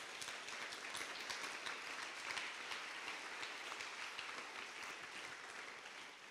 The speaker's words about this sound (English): Come on, give Him the best clap of praise.